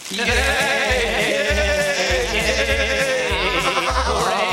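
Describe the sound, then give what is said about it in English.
Loud, sustained wavering bleats from sheep fill the whole stretch, overlapping calls with a quavering pitch, over a steady low rhythmic thumping beat underneath. “And here's our fourth or fifth sheep clip.”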